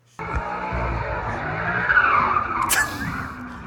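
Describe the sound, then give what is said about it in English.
A C6 Corvette's tires squeal loudly as it skids around a corner in a residential neighborhood with people out on their front lawns, a high, wavering screech over a deep engine roar that builds and holds for a few seconds before easing slightly. “And this thing comes screaming around.”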